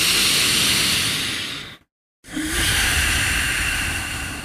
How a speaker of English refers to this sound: That's all through my nose. And what happens is that when I take that big breath in, usually it's even slower and it's a little more obvious.